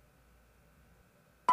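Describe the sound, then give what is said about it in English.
Near silence with a faint low hum, then a sudden loud electronic telephone keypad tone bursts in at the very end, a single sharp touch-tone beep cut off abruptly. “The fingers you have used to dial are too fat.”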